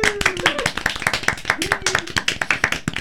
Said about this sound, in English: So, for our gathering live tonight, for our playing live tonight, for giving the world more hope tonight, let's give each other a round of applause.